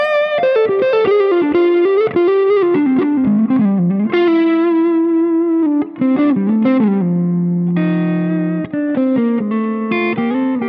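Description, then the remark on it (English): An overdriven electric guitar plays a melodic run of sustained, buzzy notes drenched in reverb, loud with a thick harmonic edge, with no talking over it. “Put the reverb back on.”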